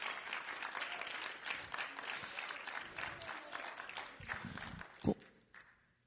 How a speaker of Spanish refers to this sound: Denle un aplauso al Señor si usted lo cree.